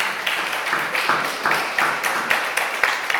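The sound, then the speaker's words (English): An audience applauding together for a couple's diamond anniversary, a steady, dense patter of many hands clapping that stays fairly even for a few seconds with no talking over it. “So I'd like to be giving them a wee round of applause.”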